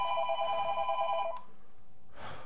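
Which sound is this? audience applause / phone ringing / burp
phone ringing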